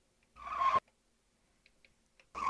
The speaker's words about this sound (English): It's the same. It might be. I think it's the same tire screech. That's why it perked right away in my brain.